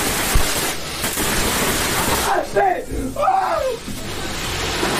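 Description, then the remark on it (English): Fireworks shoot out of the head of a Pikachu toy with a steady, loud fizzing hiss and a couple of sharp pops early on, while voices briefly exclaim over the spray midway through. “Like, after the fireworks shoot out of Pikachu's head, which you just heard, then flames and sparks and stuff come shooting out of Pikachu's arms, ears, legs.”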